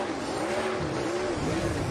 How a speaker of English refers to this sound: As Christopher burns down a used set of Goodyear Eagles. All those wins in Xfinity are showing off because he knows how to do donuts. Impressive.